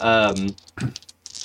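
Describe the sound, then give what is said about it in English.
A brief voiced sound gives way to a quick scatter of light, hard clicks and clatters as dice tumble across a table for a stability roll, moderately loud. “That means you'll both roll stability.”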